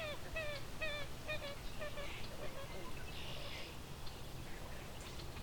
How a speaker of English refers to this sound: So that's the common gallinule.